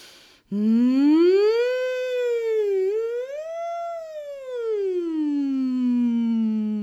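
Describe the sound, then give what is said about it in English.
A person hums one long, steady note on the out breath, the pitch slowly swooping up, dipping, rising again, then settling low. The hum is loud and continuous, with no talking. “You don't have to hum the way that I hum.”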